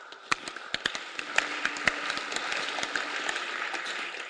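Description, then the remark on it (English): An audience claps: a steady wash of many hands with sharper individual claps popping out irregularly, fairly loud and sustained for a few seconds, with no clear speech. “As you are clapping, you should also join in praying.”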